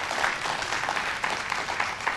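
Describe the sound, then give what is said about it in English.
A church audience gives God a hand clap of praise during a sermon, many overlapping claps merging into a steady, dense patter with a few sharper slaps poking through. No one speaks over it. “Give God a hand clap of praise if you agree with that this morning.”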